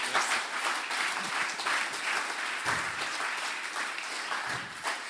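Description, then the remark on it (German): An audience at an ICF Luzern church gathering applauds two people steadily for about five seconds, a dense, even wash of many hands clapping at a constant, fairly loud level with no voices on top. “Genau, danke euch nochmal und einen grossen Applaus an die zwei.”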